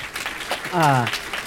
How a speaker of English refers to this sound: I want you to give yourselves a round of applause for being here, because we did not expect there to be a full crowd today, so I'm really excited.